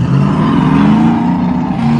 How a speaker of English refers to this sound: Listen to those vehicles roar past you. For a lot of people, they tell me that they would rather sit here and watch than cruise, because cruising can get kind of tiring after a while, but it's fun to do both.